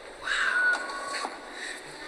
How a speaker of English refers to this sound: It's more with whistling bottles. It's with monkeys. Monkey sound.